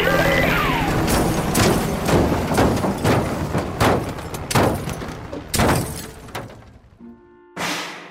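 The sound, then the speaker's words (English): A loud, chaotic crash as visitors come in through a window: glass shatters amid a rapid series of sharp bangs and clattering debris, then a brief humming lull before one last burst of noise. “But Izzy, we love crashing through your window.”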